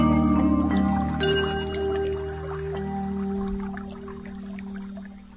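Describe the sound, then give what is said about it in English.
Gentle trickling water in a relaxation meditation runs steadily beneath soft, sustained musical tones, with scattered small drips and splashes and no one speaking. “I love the sound of the water in that meditation”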